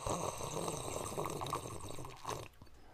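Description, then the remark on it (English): Loud, continuous slurping of milk tea, a wet gurgling suck that runs steadily for about two and a half seconds before cutting off abruptly into near silence. “I too know how to sip delicately.”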